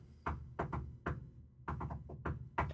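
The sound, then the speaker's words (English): About ten solid knocks on a door or hard surface, tapped in Morse code as uneven groups of quick and spaced-out raps, with no voices. “Do you like my Morse code knocking?”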